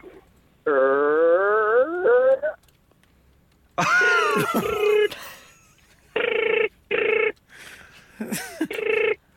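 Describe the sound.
A voice imitates the door of an old-fashioned red phone box creaking open with a strained, buzzy, wavering tone about two seconds long, followed by more vocal noises, including short repeated bursts.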